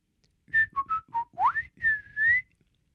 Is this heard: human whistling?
yes